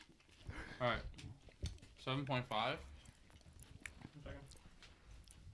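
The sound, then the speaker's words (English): Close, wet chewing of fried chicken right at the microphone, with soft crunching and squishy bites, broken up by a few muffled hums and voiced murmurs. “We're chewing right into the mic.”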